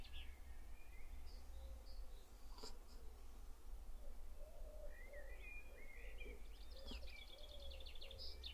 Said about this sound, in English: When you hear the birds, you can hear many layers. You can hear very carefully, you can hear the outside world, the cars, but you can also hear the leaves. Can you hear the leaves? Listen very carefully.